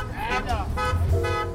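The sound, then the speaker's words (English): Car horns honk in overlapping blasts over a steady low rumble of idling traffic in a traffic jam in Lagos, Nigeria, loud, the tones stacking into a busy, congested street din. “In Lagos, Nigeria's largest metropolis and one of the most jammed up cities in the world, some people see opportunity among the stopped cars.”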